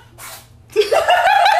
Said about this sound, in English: Just sneezed. And so the void cat just sneezed, like, well, three times.